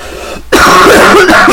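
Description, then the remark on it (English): A loud cough, a rough, raspy burst that starts abruptly after a brief quiet moment and rattles on for about a second, with no talking. “Oh my god, why are we coughing?”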